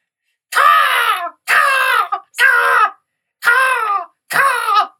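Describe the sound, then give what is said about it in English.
A voice imitates a raven with five loud, harsh, raspy caws, each under a second long and separated by short pauses, slightly falling in pitch, with no other sound around them. “I did actually see a black sort of raven fly over.”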